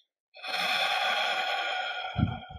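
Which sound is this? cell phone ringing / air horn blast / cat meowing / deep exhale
deep exhale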